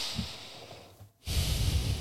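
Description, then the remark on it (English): A soft airy breath, a brief pause, then a louder, deep inhale drawn through the nose with the mouth closed, hissing, with no talking. “So if you're listening to this, close your mouth, take a deep breath through your nose.”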